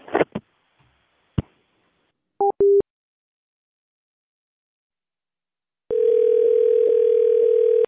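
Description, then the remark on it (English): A phone handset clatters down with a sharp click, two brief electronic beeps follow, and after a pause a steady, loud dial tone hums on to the end. “I'm going to hang up”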